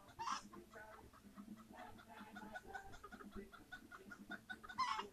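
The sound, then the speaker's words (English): Several chickens cluck in a busy, overlapping chatter, with a couple of louder, sharper calls standing out at the start and end over a steady farmyard background. “Yeah, talk to me chickens and my ducks too.”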